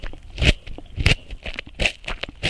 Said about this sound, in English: And this is a crunchy carrot. It immediately tells you something about whether it's crispy or crunchy. Crunchy is usually at a lower frequency than crispy.